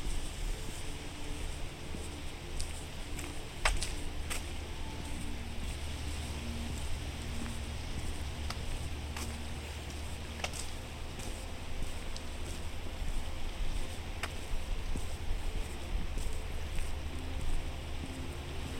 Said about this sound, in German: Je näher du den Bergen kommst, desto deutlicher kannst du das stetige Rauschen des Wassers hören und du entdeckst einen Fluss, der in den Seen aufgeht.